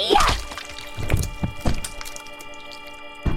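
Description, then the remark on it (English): A heavy axe chop cuts off a man's head with a hard, wet thunk, followed by several duller thuds spaced irregularly over a few seconds, all over a sustained low tonal drone. “Edith raised her axe and, well, she cut off his fucking head.”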